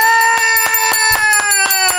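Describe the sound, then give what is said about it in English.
A bright bell rung to mark a 'sweet scream' award for the film Wood Witch, struck rapidly and continuously about four or five times a second, its tones shimmering and sustaining loudly, with no voices over it. “get the bell out.”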